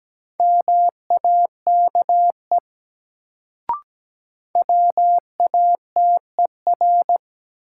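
Morse code at a steady 17 words per minute in a new-word drill from the top 100 words: a single mid-pitched tone keyed in short and long beeps, two runs of characters separated by a pause and a brief click.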